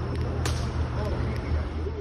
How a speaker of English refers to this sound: So there's the slap. Pretty solid slap. That was loud. Yeah. That was loud.